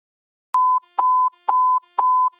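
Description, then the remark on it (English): Four identical electronic beeps ring out loud at a steady half-second pace, each a short flat tone: police radio alert tones marking a be-on-the-lookout (BOLO), sounded for every officer before the dispatcher puts out important information. No voices. “Okay, those tones, just like last week, those represent be on the lookout.”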